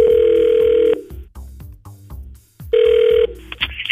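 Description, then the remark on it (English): An outgoing phone call placed by the 103.7 Play radio show to a man after a first date rings twice: a steady electronic ringback tone, each burst about a second long, separated by a pause with faint background noise. “So we're calling him up to see if we can get the real story.”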